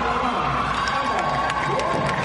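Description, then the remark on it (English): A large crowd at a swimming medal ceremony reacts as a swimmer's name is announced, with a steady, dense wash of voices, scattered shouts and a few cheers rising out of the murmur, holding at an even level throughout. “But when Leah's name was announced, crowd reaction was noticeably quieter.”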